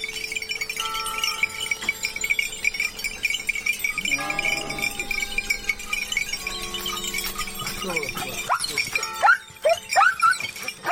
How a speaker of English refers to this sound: We leave you this week on a mountain along Italy's Tuscan coast. Near the village of Carrera, Stephen Feld found a shepherd driving his flock down marbled hillsides to the sound of bells from the village church.